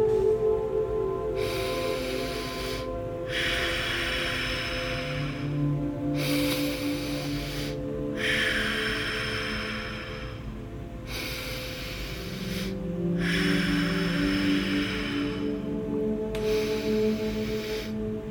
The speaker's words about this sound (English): As you're doing this, try to breathe in and out of the belly instead of the chest. So when you're ready, you can go ahead and begin. In through the nose and out through the nose.